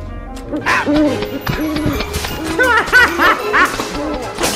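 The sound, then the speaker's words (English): Owls hoot over and over in a loud, crowded jumble, their calls overlapping with squawks and barking-like cries in a busy chorus. “I said Big Al's Pizza, not Big Owl's Pizza.”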